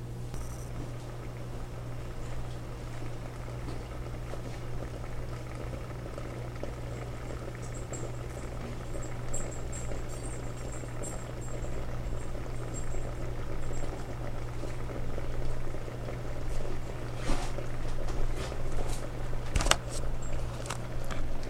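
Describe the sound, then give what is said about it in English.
A pot of water comes to a boil with eggs inside, a low steady bubbling and hum that slowly builds, with occasional faint clicks and rattles near the end. “I'm not sure if you can hear it, but the eggs and at least the water is starting to boil.”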